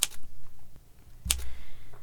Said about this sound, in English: Do you work here, or are you just testing the typewriter? Shh! Instead of pointing that finger at me, you should try using it on the keys. Perhaps you'll finish before Christmas.